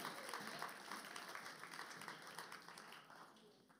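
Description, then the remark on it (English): An audience breaks into steady applause, a dense wash of many hands clapping at once that holds evenly for several seconds and only slightly fades toward the end. “Would you please give them a big round of applause because they're awesome?”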